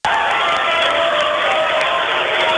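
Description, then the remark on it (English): A loud, continuous roar from a large arena crowd at a championship basketball tournament game, cheering and clapping steadily, with a dense wash of voices and no breaks. “I'm having a hard time hearing my cues over the roar of this crowd.”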